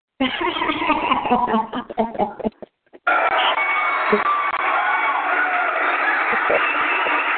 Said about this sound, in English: And the crowd goes wild.